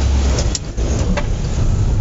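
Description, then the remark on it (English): A hire van, rented by the hour, drives with its engine droning steadily from inside the cab, a loud low rumble with road noise and a couple of faint rattles and clicks over the top. “We call this van our second car, don't we? Because it is a hire van at the top of our road”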